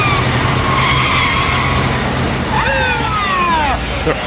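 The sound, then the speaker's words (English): Car tires screech loudly and continuously, with shrill squealing tones that rise and bend sharply near the end, over a low engine rumble. “Tires are always screeching.”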